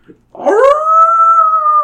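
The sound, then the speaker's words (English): A dog lets out a single loud, sustained howl that rises in pitch at the start and then holds steady, alone with no talking. “A loud, deep sound booms somewhere up ahead. It's a cross between a howl and a growl.”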